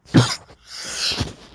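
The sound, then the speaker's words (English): A single sharp cough bursts out on air, followed by a breathy exhale and a softer rasping catch in the throat near the end, with no talking. “Okay, I should never cough on the air, but I couldn't help it.”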